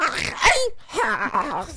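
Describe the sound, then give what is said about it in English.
A person vocally imitates Trisket the dog choking: a raspy gagging burst, a brief pause, then strained, warbling wheezes and groans, fairly loud. “All right, and now here's Trisket the dog having sex with someone and then choking on.”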